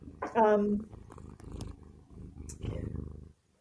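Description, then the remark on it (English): A cat named Zoe purrs in a steady, rumbling rhythm of low pulses, with a brief higher vocal sound near the start before the purring carries on alone. “Oh, and I can hear a kitty purring.”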